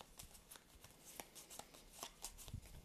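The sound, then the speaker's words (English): A deck of cards being shuffled, a quick run of crisp, papery flicks and riffles, continuing steadily for a few seconds with no voices. “Shuffling it up again.”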